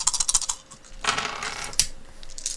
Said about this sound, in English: Come on, dice.